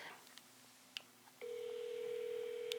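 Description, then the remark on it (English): A few soft clicks, then a steady mid-pitched telephone tone starts partway through and holds to the end: a phone line ringing on a 911 call, made on January 5, 2016, by a woman who found possible human remains while walking her dog. No one speaks. “And on January 5th, 2016, there was a woman walking her dog, and she ended up calling 911 because she found what was potentially human remains.”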